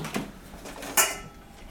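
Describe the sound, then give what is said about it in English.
A refrigerator door being opened and shut as a meat filling is put inside: a few soft rattling clunks followed by one sharper, louder clack, then a faint low hum trailing off. No one speaks. “And now I'm going to put this in the refrigerator, right, while we make our crust.”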